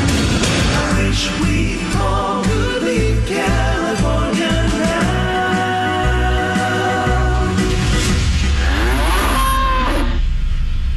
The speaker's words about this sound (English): That was quite a cow. Put a ribbon around its neck.